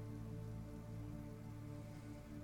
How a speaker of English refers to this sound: Just looking around, it's hard to see anything still as the rain is pounding through this area.